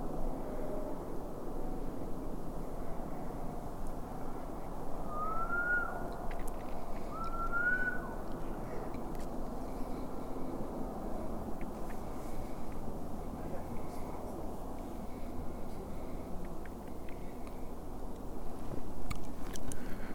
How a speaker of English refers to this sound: Sounds of the trucks from the highway to my left.